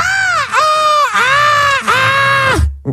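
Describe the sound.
A person imitates the pained scream a dog makes when she tries to get out of bed or move her neck: three loud, drawn-out high-pitched shrieks in quick succession, each rising then dropping at the end, with no talking.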